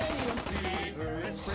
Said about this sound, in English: But let's leave the gunfire. Here, let's go up to Sanctuary.